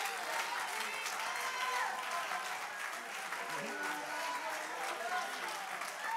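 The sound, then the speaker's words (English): A church audience claps their hands in worship of Jesus. The applause is a dense, steady roar that holds for about six seconds, with raised voices and shouts mixed into the clapping. “I tell you, we ought to clap our hands, lift our voice, worship the name of Jesus.”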